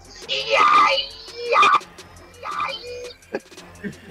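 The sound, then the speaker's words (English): A person whistles and warbles in imitation of a bird, giving three shrill, wavering calls with short pauses between, then a few softer chirps and clicks. “Bird, got, that's my bird noise. Let's hear it one more time.”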